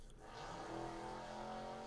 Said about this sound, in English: This fucking car just hauling ass outside. Dude, I thought it was your phone.